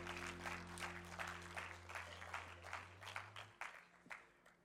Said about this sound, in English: Give the band a round of applause.